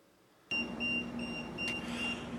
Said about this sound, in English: Let me move my phone away because it's still going off.